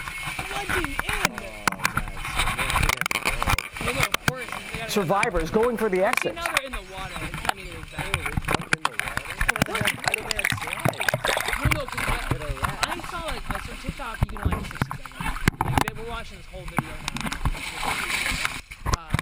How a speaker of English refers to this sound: A mad scramble as water fills the inside of the plane. No, there it is. I'm telling you, the water's in the plane.